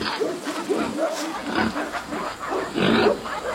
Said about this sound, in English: Hear the pigs, dogs barking, got some ducks, some geese. It's a lot more serene. Fresh air to breathe, not all the busyness of the city.